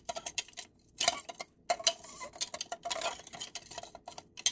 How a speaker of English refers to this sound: Put a couple ice cubes over into your cocktail shaker with your rye whiskey, bitter, and sugar mixture. And with your bar spoon, stir it 10 seconds or so.